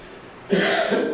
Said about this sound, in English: Well, first I have to excuse me if I have to cough and interrupt.